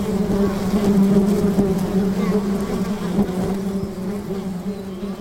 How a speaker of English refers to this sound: They form them when they're moving to a new nest. You may have seen them hanging in trees. As you get closer, you can see the bees clinging onto each other in a hanging, writhing swarm.